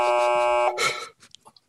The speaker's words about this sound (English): Oh, buzz. A buzz from Ian.